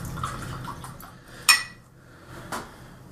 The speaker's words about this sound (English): So, we have the pour going, and it is a lovely, lovely single grain whiskey. We're cheating a little bit. This is the Girvan Pot Still.